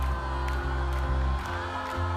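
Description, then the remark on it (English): A large crowd at a band concert on Uptown's grassy lakefront in Chicago, by Lake Michigan, cheers in a dense, continuous, loud roar, with scattered whoops and shouts rising from the mass of voices. “The city was expecting a huge crowd of 35,000 people and wanted the Bridges cleared.”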